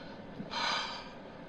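A single short, breathy yawn-like exhale, fairly soft, rising and fading over about half a second against quiet background hiss, with no talking.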